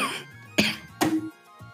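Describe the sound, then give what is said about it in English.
Two sharp, raspy coughs with throat clearing, followed by a softer third clearing of the throat. No talking, just the rough bursts against a quiet background. “I can keep the coughs in for him.”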